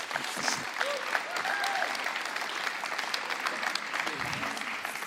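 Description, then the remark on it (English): Steady audience applause for a speaker as he comes up, a dense, even wash of many hands clapping at constant loudness, with faint crowd voices mixed in underneath. “him a round of applause as he comes up.”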